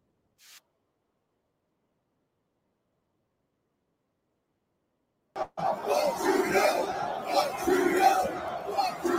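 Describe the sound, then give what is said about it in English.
A large crowd chants and roars loudly at a fight involving Strickland, a dense wall of voices rising after a brief click and several seconds of silence, continuing steadily to the end. “During the fight, this is what the crowd was chanting.”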